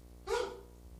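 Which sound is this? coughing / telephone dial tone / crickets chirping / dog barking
dog barking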